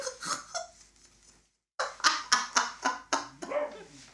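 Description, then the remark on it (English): A dog, Lolly, barks rapidly and loudly, with a string of about eight sharp barks after a brief silence, preceded by a few softer, scattered yaps. “No, she's barking right somewhere else”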